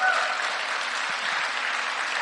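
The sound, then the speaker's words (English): Steady audience applause, a dense wash of many hands clapping at an even level throughout, with no voices standing out above it. “yeah, come on, give them a hand.”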